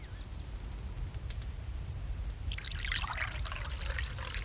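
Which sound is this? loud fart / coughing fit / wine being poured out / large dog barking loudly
wine being poured out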